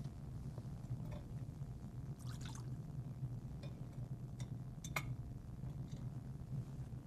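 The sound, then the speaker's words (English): A small amount of water is poured quietly into a chalice of wine, with a few soft clinks of metal or glass over a steady low room hum. No one speaks. “By the mystery of this water and this wine, may we come to share in the divinity of Christ, who humbled Himself to share in our humanity.”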